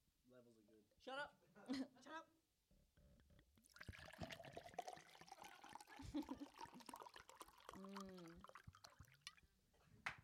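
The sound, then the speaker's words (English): Water pours steadily into a glass for several seconds, its gurgling pitch rising as the glass fills, fairly loud. People speak briefly before the pour and once near its end. “Like, no one is this indulgent to start a podcast pouring water into a glass.”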